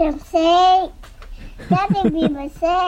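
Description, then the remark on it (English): A toddler under a large blanket sings, holding long, warbling notes with a wavering pitch, the phrases broken by short pauses and delivered with loud, earnest energy. “Picture a toddler under a large blanket singing very passionately.”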